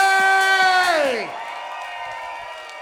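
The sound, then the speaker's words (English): A crowd cheers and claps loudly at an event marking 29 years of PaSSion as a DJ is introduced. A long, held shout rides over the noise before sliding down in pitch, and then steady cheering and scattered applause continue. “Make some noise for 29 years of PaSSion, the legend that is”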